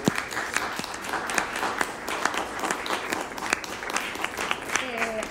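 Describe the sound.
An audience applauds steadily for several seconds, a dense wash of overlapping claps with sharp individual hand strikes popping out, and a brief voice surfaces at the very end.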